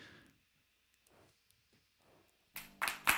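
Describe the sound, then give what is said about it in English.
After a near-silent stretch, an audience breaks into a brief, sparse patter of clapping: a few loud, sharp claps landing unevenly over the last half second or so. “See, that's a good-sized audience. Except the claps are...”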